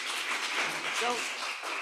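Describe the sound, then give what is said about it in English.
An audience applauds, a dense, steady wash of many hands clapping that holds at an even level throughout, with a brief voice rising faintly underneath midway. “Don't applaud.”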